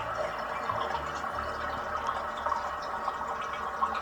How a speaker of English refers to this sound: Those ones are terrible when you need to do a double flush, but you've got to wait for it to fill up again. And then if you have to do a triple flush. I can't imagine.